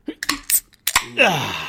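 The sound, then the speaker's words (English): Beer cans are cracked open: a handful of sharp metallic clicks and snaps, then a sustained fizzing hiss as the carbonation rushes out, with no talking. “Are you ready to pop tops”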